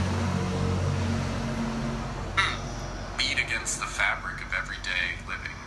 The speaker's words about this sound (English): Wait, let's wait for this truck to pass.